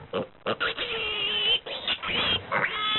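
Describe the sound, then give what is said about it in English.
A pig grunts and oinks repeatedly in uneven bursts, with some squealing, tonal snorts running through the middle of the sequence. “Look, darling Benelli, that pig. It looks particularly peaky.”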